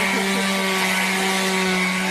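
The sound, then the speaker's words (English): A power drill whirs steadily and loudly for about two seconds, a continuous high motor whine with a buzzing hum beneath it and no pauses or talking. “That sounds like an oil drill. I swear this is how it sounded.”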